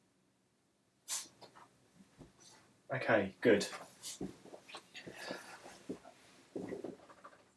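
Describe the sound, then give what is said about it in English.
A dog shakes itself off with a quick flapping, rattling burst, then sniffs in short, busy snuffles, while a person speaks briefly and quietly. “It's doing one of them things where dogs shake and go woo, woo, woo, woo. Still sniffing constantly now.”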